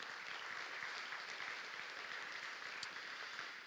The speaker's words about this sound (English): So give them a round of applause and thank them for that this morning.